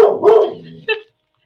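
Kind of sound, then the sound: animal, dog barking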